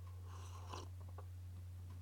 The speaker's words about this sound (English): And let me sip my coffee real quick, just a second.